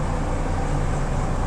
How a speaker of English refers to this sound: And we have a tractor coming in. So we're going to kind of be quiet for just a second while the tractor comes in.